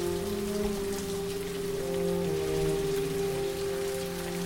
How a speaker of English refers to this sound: The rain starts to pour down heavily. Lightning and thunder fill the skies, tremendous and utterly uncontrollable.